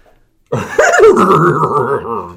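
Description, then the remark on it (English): A man's voice attempts a cartoon dog impression that comes out as a wavering, horse-like whinny, about two seconds long, fairly loud after a brief silence. “That was a horse sound. It was supposed to be Scooby-Doo.”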